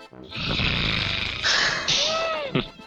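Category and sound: vocal imitation, voice imitating loud snoring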